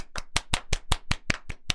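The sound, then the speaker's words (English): A brief burst of clapping from a few people, about nine crisp, evenly spaced claps in a quick steady rhythm, moderately loud with no voices over it. “Let's give him a little round of applause.”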